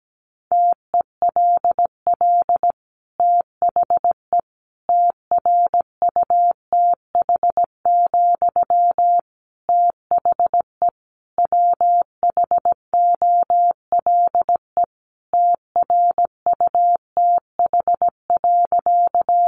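Morse code sent at about 17 words per minute, sending sentences built from the top 800 words: a single steady mid-pitched tone keyed into quick dots and longer dashes, with brief gaps between letters and words, and no voices.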